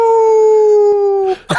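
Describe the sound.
Someone imitates a wolf howl: one long, loud, steady wail gliding slightly downward, then a short breathy break and a quick rising yelp.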